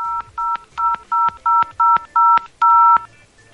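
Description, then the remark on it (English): A quick run of about nine telephone keypad tones, each a short dual-pitched beep in steady rhythm, as a number is punched in on a call to a toll-free line's automated menu. The tones are clear, with no talking. “Okay, I just submitted a number.”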